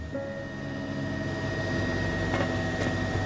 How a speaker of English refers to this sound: While it wasn't impossible to talk over the whine of the helicopter, no one had any words to say.